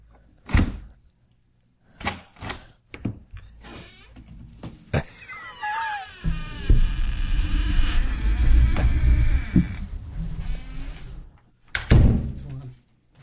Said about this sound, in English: If you love it. Open and close the door 12 times. If you don't like it, Mackie, open and close the door 42 times.